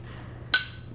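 A single sharp knock of an object striking glass, followed by a bright, high ringing that fades over about half a second above a low, steady hum.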